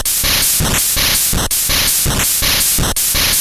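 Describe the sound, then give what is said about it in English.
Loud, harsh digital hiss from a retro sound chip's noise channel, pulsing in a fast repeating pattern of static bursts with brief tonal blips, no voices over it. “So it'll be some version of either like a hiss or like a crackling sound, and you can change how long it plays in different pitches, and you can, right, you mess around with the settings to get something that's mildly percussive.”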